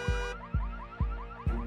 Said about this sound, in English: You can also send them running by installing a really loud car alarm that reacts to the slightest motion. I'm sure your neighbors will love that.